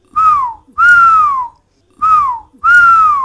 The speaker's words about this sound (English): Tubi felt happy and whistled.